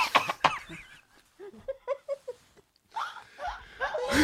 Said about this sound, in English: You're coughing? Sure, I'll cough.